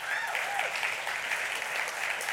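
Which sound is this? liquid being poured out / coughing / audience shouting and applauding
audience shouting and applauding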